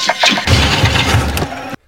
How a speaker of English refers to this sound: Number two, cars not starting in horror movies.